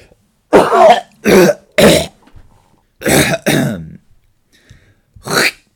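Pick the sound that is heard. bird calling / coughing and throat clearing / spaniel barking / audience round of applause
coughing and throat clearing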